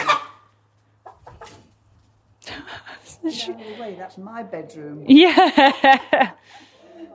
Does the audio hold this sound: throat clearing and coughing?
no